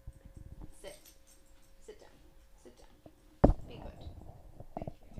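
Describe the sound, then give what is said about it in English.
A small female dog scrabbles and clambers over a computer: scattered soft taps and scratches, then one sharp thud, followed by busy rustling and shuffling, with faint talk underneath. “The dog is just climbing on the computer.”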